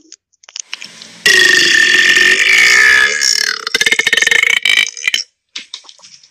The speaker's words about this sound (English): Did you hear that? Let's just concede the burping contest right now. Oh, I ain't got no skin in that game right there. That was epic.